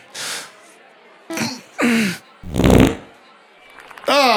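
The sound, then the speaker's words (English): A loud, wet, sputtering fart with a low buzzing rasp, set among several short bursts of breathy hiss and squeaky, falling vocal noises. “Oh, that was slightly wet sounding.”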